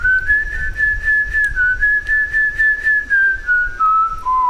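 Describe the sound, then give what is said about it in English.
Someone whistles a song melody, a steady, clear melodic line sliding gently between notes for several seconds, with soft breathy pulses and no talking over it. “give me your best Fly Love whistle”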